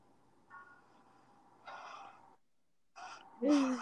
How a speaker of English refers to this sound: Breathing shakily.